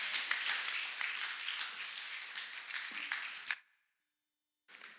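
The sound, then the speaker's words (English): A crowd at Phoenix Bible Church claps steadily in a dense, even wash of applause for about three and a half seconds, then it cuts off abruptly into silence before clapping briefly starts up again. “Would you clap for them one more time?”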